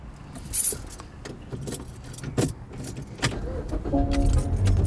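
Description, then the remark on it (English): Metallic jingling of car keys, a cluster of bright clinks over a few seconds, followed by a car engine cranking and turning over into a steady low idle rumble. “Can you start the fucking car and roll the window down so I can get some air?”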